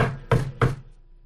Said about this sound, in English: is knocking on the door.